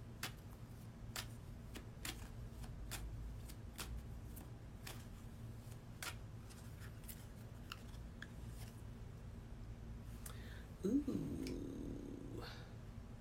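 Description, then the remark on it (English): A deck of oracle cards being shuffled by hand, a steady run of crisp clicks and riffles over a low hum, ending with a brief burst of rustling near the close. No one speaks. “Let's get a shuffle.”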